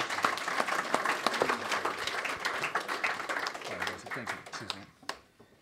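An audience breaks into steady, dense applause, many hands clapping in a continuous crackling wash that holds for several seconds before tapering off to a few scattered claps and quiet.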